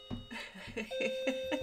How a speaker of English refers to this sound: Can you hear my doorbell? If it's not the kids, it's a courier.